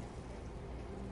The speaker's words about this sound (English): That way it's still sizzling.